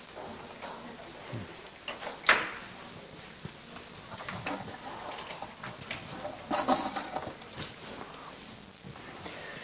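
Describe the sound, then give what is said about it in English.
A door swings shut with a single firm knock about two seconds in, followed by soft shuffling, rustling movement and faint indistinct murmuring. “can you close the door?”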